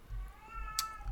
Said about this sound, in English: Is that a cat or a baby? It's definitely a cat.